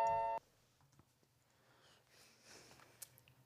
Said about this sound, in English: Attention. The fire alarm is testing on floor 79. If this happens, leave the room immediately.